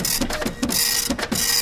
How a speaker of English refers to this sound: here, it's printing out right now. Let me pull this thing off the printer.